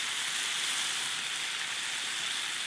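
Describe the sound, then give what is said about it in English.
Steady sizzling of food frying on a hot pot, a dense crackling hiss that holds at an even level throughout with no voices. “And then sizzling on the hot pot.”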